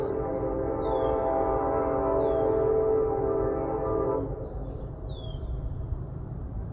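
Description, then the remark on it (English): A train rumbles by, its loud, sustained horn blaring for about four seconds before cutting off, leaving a lower rolling rumble. A few faint bird chirps sound overhead. “I didn't even know there was train tracks over here.”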